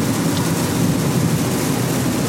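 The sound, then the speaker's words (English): Steady rain drumming over the rumble of a car being driven toward Columbus, Ohio, on a Friday, a dense, constant wash of hiss and low road noise with no voices and no pauses. “Okay, the rain's picking up again, and I'm passing what looked to be, oh, it looks like a fire truck, a rescue engine.”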